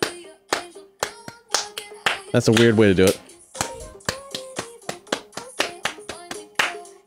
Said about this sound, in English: No, but that's like a weird clap.